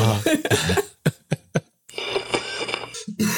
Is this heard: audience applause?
no